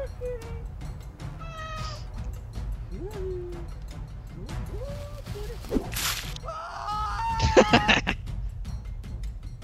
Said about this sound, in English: There's a cat noise.